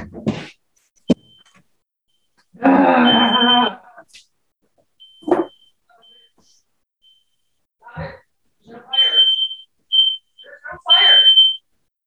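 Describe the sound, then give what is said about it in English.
A home smoke alarm sounds in short, high-pitched beeps at irregular intervals, going off on its own with no fire, clear, with bits of a person's voice and breathy sighs between and around the chirps. “My fire alarm is going off.”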